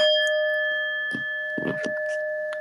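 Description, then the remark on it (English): A struck Tibetan singing bowl, used for meditation, rings out with a steady, sustained shimmering tone that hangs through the whole moment, with a few soft knocks and rustles underneath. “I got this beautiful Tibetan bowl for meditation and stuff.”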